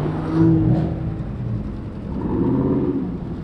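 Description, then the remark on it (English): Car engines rev loudly at a street racing spot in the Woodside neighbourhood, among hundreds of cars, with two throaty surges that climb and fall in pitch over a steady low rumble of idling motors. “The revving engines, the squealing tires, the popping tailpipes, honking horns grew louder as I approached.”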